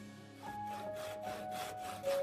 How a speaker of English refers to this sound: You're in a woodwork room where you've got five machines roaring.